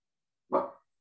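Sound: small dog barking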